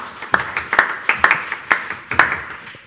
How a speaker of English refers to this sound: It's terrible when you have to force people to clap, isn't it? It's just not. You don't have to clap.